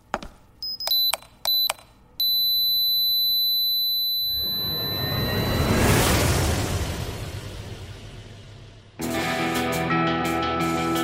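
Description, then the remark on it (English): An electronic alarm, being switched off, beeps in a few quick bursts, then holds a steady high tone while a loud rushing roar swells beneath it and fades, before a dense, jangling burst of sound cuts in. “Oh, hey, let me just turn my alarm off.”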